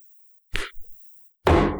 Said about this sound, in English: I can't use our slingshot because did you hear the sound it made when he slapped himself? It was so big and so loud.